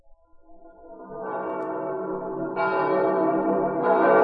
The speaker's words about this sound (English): Listen to the bells of St. Peter's calling the faithful to midnight mass on this holiest of nights.